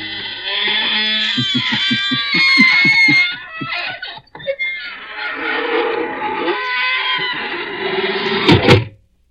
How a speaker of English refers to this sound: Folks, here we are outside the squeaking door